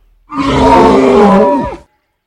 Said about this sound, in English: Huini Pachutli was beside himself with manic excitement and let out a bellowing, high-pitched roar.